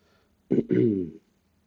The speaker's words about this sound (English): Also, that's just a regular cough.